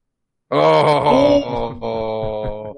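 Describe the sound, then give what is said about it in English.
A loud, deep, droning blast like the dramatic horn sound effect from the film Inception, apparently voiced by a person in a low groaning tone, holding for about two seconds with a slight dip and wavering pitch. “Dude, that's Inception sound effects.”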